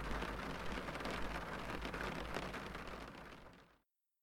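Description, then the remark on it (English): Heavy rain pelts down in a dense, steady, unrelenting roar with a low rumble underneath, then cuts off abruptly near the end. No voices are heard. “Rain pelted in an unrelenting fashion.”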